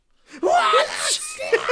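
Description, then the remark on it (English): Gottmik produces a made-up fake sneeze on direction, a sharp breathy intake rising into a strained, drawn-out vocal burst with a few wavering tails, fairly loud over under two seconds. “They were like, Gottmik, make up a sneeze.”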